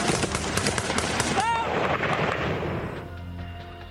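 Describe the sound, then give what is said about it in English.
Dense, rapid bursts of gunfire crackle continuously and loudly as Taliban fighters begin an assault on American soldiers at dawn at Wanat, Afghanistan, with a brief whistling streak midway and voices faintly audible beneath before the firing eases into a lingering rumble. “And then, as dawn breaks, the assault begins with a hail of gunfire.”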